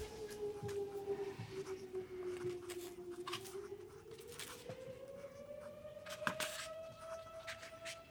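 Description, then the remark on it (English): A siren wails outside behind the speaker in Litchfield, Connecticut, its tone sliding slowly down and then rising in one long, steady sweep, fairly faint over background noise with occasional soft clicks. “I still have a siren behind me.”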